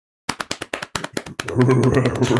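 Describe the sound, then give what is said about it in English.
A fairly loud drumroll tapped out by hand: sharp individual taps that quicken into a dense, rapid roll, with a denser tonal layer joining in for the final second. “And representing the prosecution, drumroll please.”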